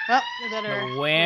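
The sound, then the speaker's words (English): A wailing ambulance siren passing outside rises and falls in pitch, loud and steady, for a brief moment. “Ooh, ambulance is here.”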